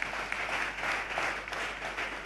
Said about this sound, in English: Please clap for this voice.